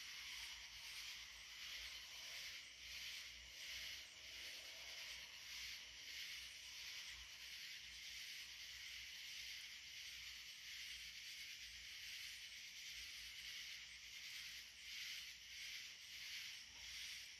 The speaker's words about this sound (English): Imagine you sitting under a night sky, the moon is shining bright on you, and you hear those beautiful tree frogs in the distance.